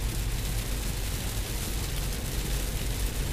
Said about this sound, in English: Wow, that fucking rain is coming down hard. Curious to see how fucking distracting it is. I mean, I can't see in the highway, so I guess.